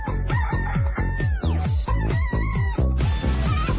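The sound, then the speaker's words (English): Several roosters crow loudly, their harsh, drawn-out calls overlapping in a steady, continuous chorus with no talking. “Yeah, we got to let the roosters have a little bit, don't you think?”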